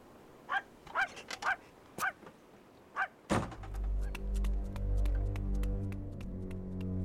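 dog barking and whimpering

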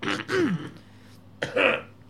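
coughing and throat clearing

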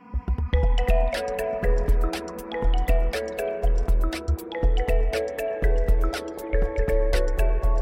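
rain

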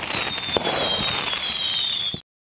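fireworks sound effect

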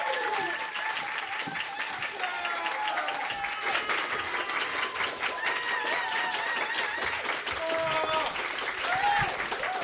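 audience applause and cheering

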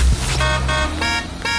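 car horn beep

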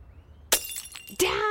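glass bottle breaking

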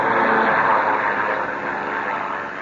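airplane engine circling overhead

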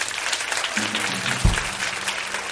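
audience clapping

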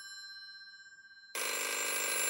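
telephone ringing

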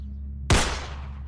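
gunshot

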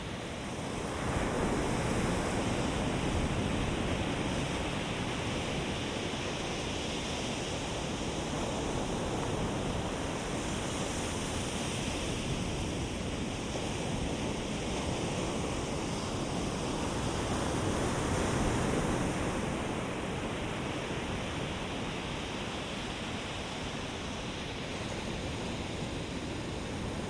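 ocean waves

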